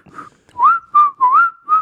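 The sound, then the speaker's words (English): A person whistles through a three-ply cloth face mask, a short run of clear, sliding notes rising and falling in quick phrases, fairly loud with no talking. “You're really good whistler.”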